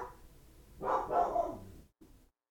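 A dog lets out a quick pair of muffled barks, followed by a brief quieter sound and silence. No one is talking.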